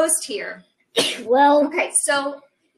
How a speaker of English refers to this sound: Bless you. Bless you. Yeah. Thank you. We're dealing with allergies over here, guys.